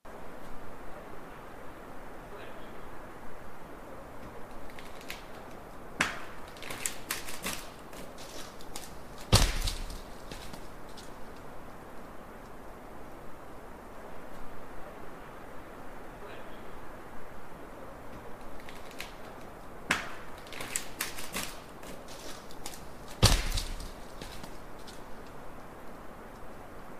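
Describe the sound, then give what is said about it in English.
A large tree branch cracks in woods, heard from a campfire: a run of splintering creaks builds to one loud, sharp snap and thump, and the whole sequence plays twice over a steady background hiss. “Now, let's go ahead and play, as you alluded to earlier, Chris, the large branch break.”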